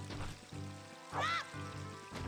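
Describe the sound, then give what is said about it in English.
A video game chicken clucks with one sharp, squawky call near the middle, set against steady rhythmic tones that pulse roughly every half second. “This chicken just wants to get picked up.”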